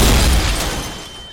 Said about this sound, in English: And a violent explosion.